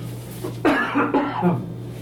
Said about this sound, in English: So I think a few weeks ago what's wrong with my voice? Let me just cough, hang on.